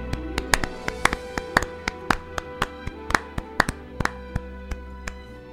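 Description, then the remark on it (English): Steady, evenly spaced hand claps, about two per second, sounding like a small round of applause rather than a crowd, given for Professor Layton series composer Tomohito Nishiura, over a faint sustained low hum. No one speaks. “Can we just take 5 seconds and just give him a round of applause to Nishiura-san?”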